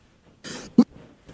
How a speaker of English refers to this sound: Sorry about all the coughing, by the way.